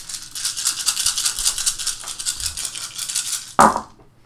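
Dice rattle in a steady, rapid shake for several seconds, then land with a single sharp clatter that quickly dies away. No one speaks.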